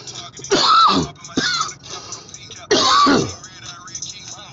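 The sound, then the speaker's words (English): A loud morning bout of harsh, raspy coughing: three rough bursts spread over a few seconds, each with a gravelly throat-clearing edge, and quieter breathy rasps between them. “Coughing out my lungs this morning.”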